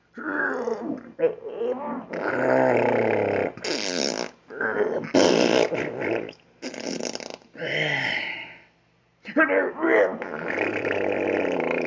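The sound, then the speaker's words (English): A long run of loud, raspy, rumbling fart noises, apparently made by a voice, as the character Yoda takes a dump in Hank's refrigerator, with growly, strained bursts in irregular spurts and a brief pause before a final stretch. “Yoda blow up Hank house with his fart”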